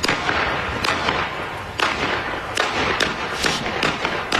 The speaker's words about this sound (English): Now, that sounds bad, but we have video. Check this out. This is unbelievable. This guy shooting at the house. Here we go.